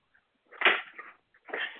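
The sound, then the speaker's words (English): Dishes being washed: two bursts of clattering and rattling, the first stronger and longer, the second starting after a short pause, with no talking. “Somebody is washing dishes, dog.”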